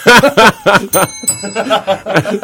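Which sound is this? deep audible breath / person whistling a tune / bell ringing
bell ringing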